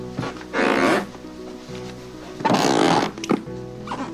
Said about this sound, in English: Do you have dripping faucets? How about squeaky floorboards driving you insane?